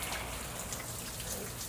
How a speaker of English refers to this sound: That's actually the sound I fall asleep to every night, the sound of rain.